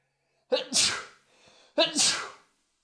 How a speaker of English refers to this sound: Allergy sneeze or coronavirus sneeze, people? What was it? It was an allergy sneeze. I didn't take my allergy medicine this morning.